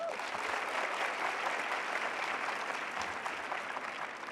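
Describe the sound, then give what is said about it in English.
Sustained applause from an audience showing how many have seen the film Chariots of Fire, a dense steady patter of many hands clapping at a fairly even loudness for several seconds, with no talking over it. “By a round of applause, how many people here have seen Chariots of Fire?”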